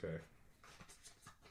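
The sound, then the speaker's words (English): Soft papery rustles and quick scraping swishes as seven word cards are shuffled and handed over, in a few short bursts right after a brief voice. “No, just shuffle them up and hand them to me.”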